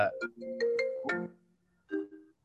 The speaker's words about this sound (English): We get a phone call into the pod.